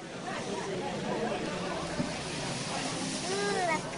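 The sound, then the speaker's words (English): Liquid nitrogen, cooled to about minus 196 degrees, bubbles and seethes in a steady hiss of boiling as it warms up and turns back into gas during a science demonstration, with faint murmuring voices of a crowd in the background. “Why do you think it's bubbling? It's warming up.”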